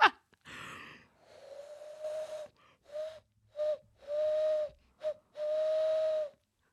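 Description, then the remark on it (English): A person hand-whistling an owl imitation: a series of hollow, breathy hoots, some short and some drawn out, in an irregular rhythm. Fairly loud, with no talking. “That was me hand whistling.”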